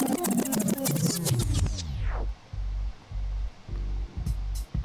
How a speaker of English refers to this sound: hold on, let me switch this instrumental and get back to this topic real quick.